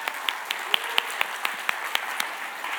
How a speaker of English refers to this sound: Would you give a round of applause to your hiders?